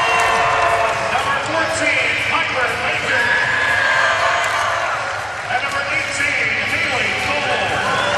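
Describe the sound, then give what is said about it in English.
An arena crowd of Belmont fans applauds and cheers steadily for several seconds as the Belmont volleyball team's non-starters are introduced, a dense, loud wash of clapping mixed with shouting voices and whistles that never lets up. “Big round of applause here from the Belmont faithful.”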